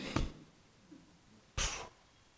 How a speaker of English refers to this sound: Bless you.